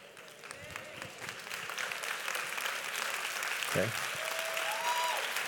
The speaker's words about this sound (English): Come on, let's give all these men a big round of applause in here today.